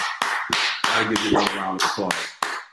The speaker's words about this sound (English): Bro, I got to give you another round of applause, bro.